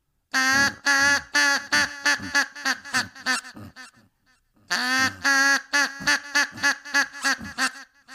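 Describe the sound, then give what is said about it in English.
A person imitates a duck in heat with a call, a loud series of rapid nasal quacks in two bursts separated by a short pause, each burst trailing off into softer, quicker quacks. “Gotta stretch before you do the call.”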